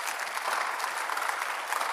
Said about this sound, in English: You can clap your hands.